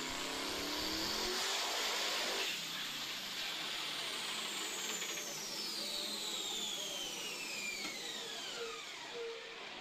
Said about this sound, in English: There goes the turbo.